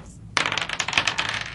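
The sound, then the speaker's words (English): Dice clatter and tumble across a hard tabletop for an initiative roll, a sudden rattling burst followed by a quick series of bouncing clicks that settle within about a second, fairly loud. “Can I get an initiative roll, gentlemen?”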